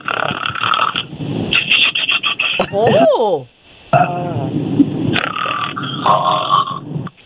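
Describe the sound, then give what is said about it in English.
A loud, drawn-out snoring sound, apparently made by a voice imitating a snore, rises and falls once in the middle, with phone-quality talking before and after. “Snore away, sister.”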